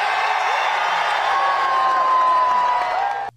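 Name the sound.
crowd cheering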